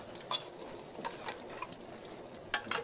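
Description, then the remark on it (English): Coffee pours steadily into a cup with a soft, continuous splashing, broken by a few light clinks and taps of the cup. No one speaks. “Here, I'll pour it for you.”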